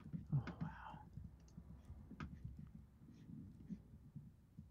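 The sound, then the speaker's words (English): Faint, scattered computer clicks from someone browsing TripAdvisor to look up La Triunfal in Barcelona, a few sharp taps spaced irregularly over a low, muffled background rumble with indistinct voices. “People can hear me clicking.”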